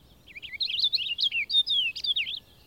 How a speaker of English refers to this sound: One of the leading songsters in this choir of the old bark peeling is the purple finch, or linnet.